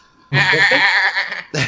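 A goat lets out one loud, quavering bleat lasting about a second, then a second cry begins abruptly just as the sound ends. No one speaks.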